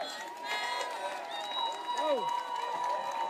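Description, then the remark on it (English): Protesters cheer together as the police start to back up, a steady wash of many raised voices with a few rising and falling whoops standing out near the end, holding at a fairly constant loudness throughout. “The police start to back up. Protesters cheer.”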